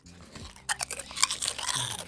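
Quiet chewing of something crunchy, a string of soft crackly crunches in quick succession with no talking.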